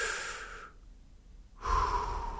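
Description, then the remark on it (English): A deep breath is drawn in audibly, followed by a pause and then a long, forceful exhale, with no talking. “I'm not going to go into all those right now because I've already gone long enough, but just breathe deep and breathe.”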